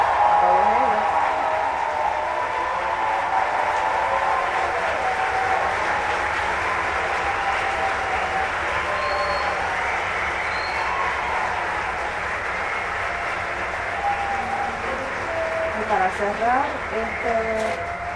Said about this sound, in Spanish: Ok, vamos a dar un aplauso.